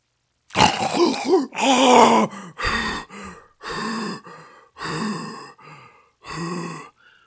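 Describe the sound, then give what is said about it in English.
A person vocally imitates a man who stops breathing and then suddenly breathes in with a loud, rasping giant snore, followed by a series of heavy, rhythmic panting breaths as if after hard exercise. “and then breathed in suddenly in a giant snore and then sounded like he had been exercising really hard. So I'm going to try to mimic it.”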